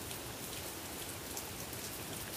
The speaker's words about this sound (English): The rain's slowing down, guys. You hear/feel that, guys? The rain's slowing down. Oh my gosh.